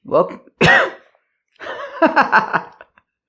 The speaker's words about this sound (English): Oh gosh, I think that little cough is becoming part of the introduction. It's like, how you doing there? Cough. How you doing there? A little unexpected part of the introduction over there, sneaking its way.